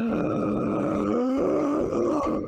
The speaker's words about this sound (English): gasp echoes through the ravine.